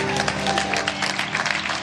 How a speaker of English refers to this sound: It was my wife's smile that caught my attention. No, that's true. Clap your hands for her.